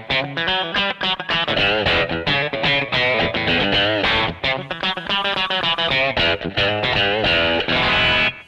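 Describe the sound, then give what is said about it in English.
A loud, overdriven electric guitar plays a busy run of notes, each one trailed by a quick single echo that gives it a doubled, slapback feel. No one speaks. “And then, some delay, slapback.”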